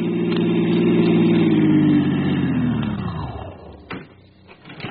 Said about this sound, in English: I parked my car in the driveway of the Whitfield farm